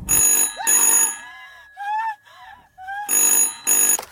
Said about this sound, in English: But then the moment was broken when the phone began to ring.